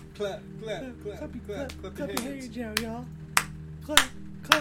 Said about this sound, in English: Clap. Everybody now, clap your hands.